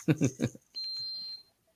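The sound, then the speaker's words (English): A fire alarm gives one sustained, shrill electronic beep lasting under a second, steady and fairly loud, sounding right after a short burst of people talking. “Oh, fire alarm.”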